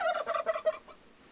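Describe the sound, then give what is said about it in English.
A turkey gobbles in a quick, rattling burst of warbling notes lasting under a second, clear, then fades into quiet with no one speaking. “No wonder Beatrix steered clear of turkeys.”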